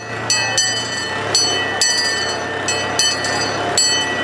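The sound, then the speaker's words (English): A small park train in Stanley Park, giving Easter rides through the forest, rolls along its rails with steady clacking and metallic clinks repeating every half second or so, plus a low engine hum and a faint bell-like ring, moderately loud. “This long weekend, kids and those young at heart can enjoy a ride through the forest on board the Stanley Park train.”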